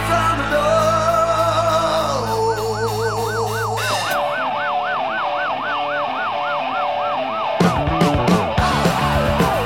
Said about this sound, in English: It's cool. I like the siren sound effect that's in there.